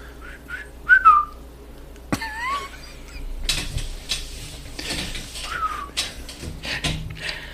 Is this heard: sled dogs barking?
no